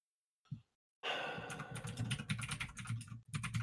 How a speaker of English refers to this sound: As everybody can hear my typing on the keyboard while I look up some information.